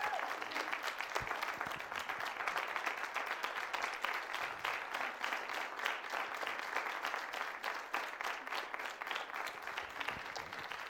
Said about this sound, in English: So we want you to know that all of us here do support you. Let's give our pastor a round of applause.